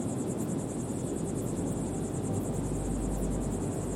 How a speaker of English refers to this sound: I listen to the night, the sounds here at the transition between the Atlas Mountains and the desert. This is your time now. Relax, join the short breathing meditation, and enjoy the sounds and wind of the desert.